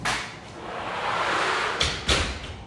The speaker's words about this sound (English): So I'll just close the door, it's not as noisy, but...